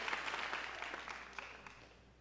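A church audience claps together to the Lord, a dense wash of many hands slapping at once that starts strong and gradually thins and fades over a couple of seconds.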